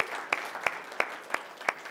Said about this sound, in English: There you go. You guys know, once everyone's done clapping, you sit down. That's what happens.